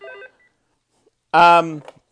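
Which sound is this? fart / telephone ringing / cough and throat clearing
telephone ringing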